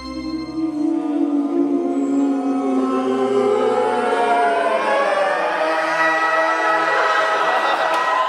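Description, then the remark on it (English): The Deep Note audio logo: a dense, murky cluster of synthesized tones slides and spreads apart, swelling into a loud, sustained chord that spans low and high pitches, with no talking. “Now, Deep Note is probably not as famous as a Beethoven symphony, but it's become a staple in its own right.”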